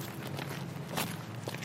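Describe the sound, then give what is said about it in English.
Footsteps walking at a steady, unhurried pace through the Botanic Gardens, past a pond full of ducks and a rockery, several soft crunching treads over a constant low outdoor hum, with no voices. “We're going a bit further into the Botanic Gardens now and walking past a beautiful pond full of ducks on one side and a lovely rockery on the other side.”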